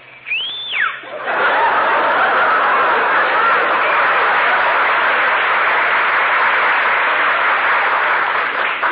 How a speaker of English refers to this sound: Whistle through your teeth.